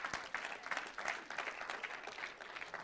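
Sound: audience applause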